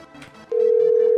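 After a brief stretch of faint background murmur, a steady outgoing-call ringing tone starts midway: one continuous, mid-pitched hum that holds loud and unchanging to the end.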